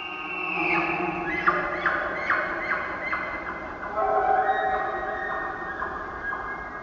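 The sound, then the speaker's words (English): A bull elk's rutting bugle in the Queets Valley on the Olympic Peninsula, called from beyond the conifers among Sitka spruce. It rings out as a high, whistling call that climbs in pitch, breaking into a run of repeated squealing notes before settling into a steadier tone over the low, steady rumble of the Queets River. “An elk bugle.”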